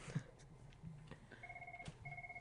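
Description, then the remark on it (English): A studio telephone rings in two short bursts of a steady, warbling electronic trill, following a few soft clicks and thumps; the incoming call is from a telemarketer. “Oh, we're getting a call.”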